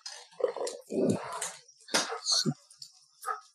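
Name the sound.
dogs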